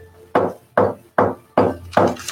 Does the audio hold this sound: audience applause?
no